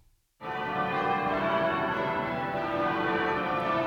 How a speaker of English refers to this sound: And at that moment, I heard the ringing of the bells that meant that it was Christmas midnight